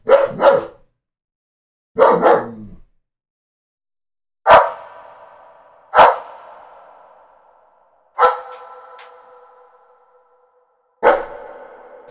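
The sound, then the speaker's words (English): The speaker's own male dog barks in two quick double bursts, followed by four sharp, widely spaced barks that each ring out with a long, echoing tail. Loud, with silence between them and no talking. “I'm censoring my dog.”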